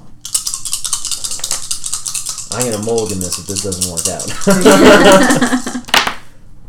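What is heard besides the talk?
dice being rolled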